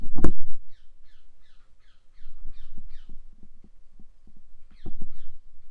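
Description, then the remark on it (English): King parakeets squawk in a tree, fighting over food in hanging feeders, in a quick repeated series of harsh calls, pause briefly, then break into another burst, with a few low thumps and knocks underneath and no voices. “Fucking squawking bastards. And when you're trying to do an interview.”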